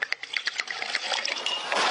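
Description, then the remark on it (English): Vodka poured steadily into a glass, a continuous splashing gurgle that starts with a few bright drips and builds to a fuller, rushing stream over about two seconds. “Where she just basically puts the bottle of vodka in it.”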